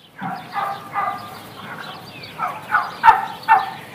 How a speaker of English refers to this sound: That wasn't Dan Barber. Right. Yes. Those were turkeys.